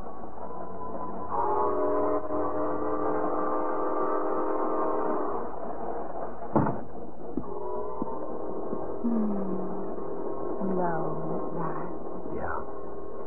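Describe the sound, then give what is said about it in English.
A passenger train bound for Detroit pulls out of a depot with a long, loud, steady whistle blast, followed by clanks and the rumble of the cars, then a few shorter whistle toots as it moves off. “the wedding party rushed Jane and Bill to the depot just in time to push them aboard the train for Detroit”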